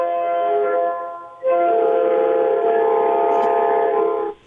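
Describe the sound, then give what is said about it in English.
A loud train horn sounds two sustained blasts, a short one and then a longer one, each a steady, multi-toned chord with no other sounds. “Hey, boys, as I promised on the text line last week, train horn.”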